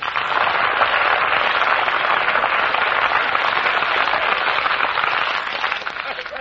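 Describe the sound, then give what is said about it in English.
An audience applauds steadily on an Armed Forces Radio Service broadcast as Eddie Green arrives, a dense, continuous crackle of many hands clapping at an even loudness for several seconds before easing slightly at the end. No voices are heard. “Well, what's going on there, you see, that it says me and everybody applauding and all I'm doing is looking for my grandfather.”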